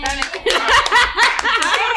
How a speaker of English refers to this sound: We should clap it off.